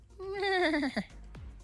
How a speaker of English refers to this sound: That was a horse sound, by the way. Because the horse county. Because the horse county is Kildare.